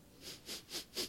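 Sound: sniffing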